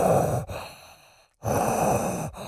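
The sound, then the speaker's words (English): A person imitates Darth Vader's heavy, mechanical respirator-style breathing: two loud, rasping breath cycles, each a long noisy draw followed by a brief silent pause, with no talking. “Give me your Darth Vader.”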